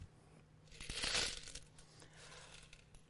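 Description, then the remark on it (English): Small coins drop into an offering and clink together in a brief metallic jingle that swells about a second in, then trails off into a few lighter, scattered clinks. Quiet overall, with no voices. “But what they would literally do is they would go and they would get the smallest coins they could possibly get in order to make their gift.”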